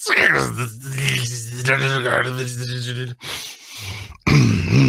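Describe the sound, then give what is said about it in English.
A voice imitates harsh dial-up modem noises mixed with roaring, a loud strained growl with buzzing, hissy bursts, a brief dip near the end, then a sudden loud blast. “You hear something that sounds like a combination between old school, like, dial-up internet noises and, like, roaring.”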